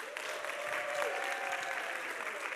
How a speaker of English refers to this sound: Now what I want you to do is give yourself a round of applause for making it through this amazing week.